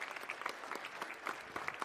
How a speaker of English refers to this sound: This has been an incredible journey for them. Come on, give them a round of applause.